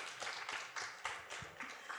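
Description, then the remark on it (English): A crowd applauds the celebrated Indonesian poet Patsapardi Joko Damono: a dense patter of many hands clapping together, steady and moderately soft with small swells, and no voices over it. “Everyone, please give him a big round of applause.”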